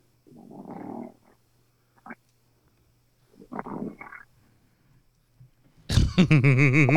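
human body sound, person snoring

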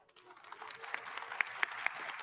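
crowd, audience cheering and applause

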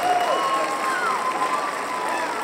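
crowd, audience applause and cheering

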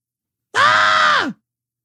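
animal, goat screaming

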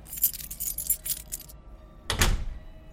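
household object, keys jangling

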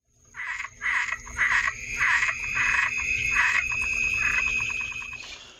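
animal, frog croaking

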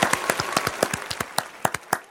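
crowd, round of applause

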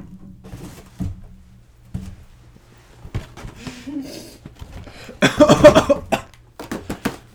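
human body sound, blowing nose

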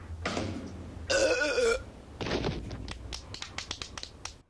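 human body sound, loud burp

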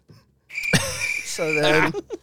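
sound effect, cricket chirping sound effect

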